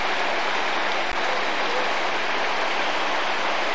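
A mountain stream near the southwestern part of the Troodos rushes steadily, a dense, unbroken hiss of flowing water filling the whole scene with no pauses or changes, and no voices heard.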